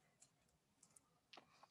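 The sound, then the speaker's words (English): Quiet keyboard typing, a handful of light, irregular clicks scattered over a couple of seconds, with a small cluster near the end, soft. “I was typing too slow.”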